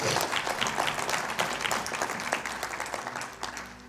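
A crowd of people clapping together, dense and steady with many overlapping hand claps, loud, tapering off slightly toward the end.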